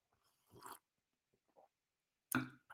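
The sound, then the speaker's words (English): Quiet sips of coffee: two short slurping bursts about two seconds apart, with faint mouth and swallowing noises in between and no talking. “Let me get a sip of this coffee.”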